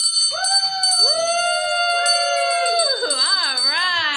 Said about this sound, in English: you get to ring the bell for him.